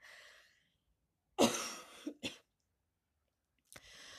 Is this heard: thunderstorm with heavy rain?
no